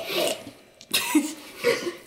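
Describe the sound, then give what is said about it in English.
Three rough, raspy coughs in quick succession, with brief pauses between them and no talking. “But his eyes kind of flutter open a bit, and he coughs.”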